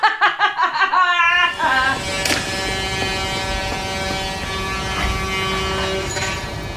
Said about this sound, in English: That should be it, shouldn't it? But no, it's chainsaw day.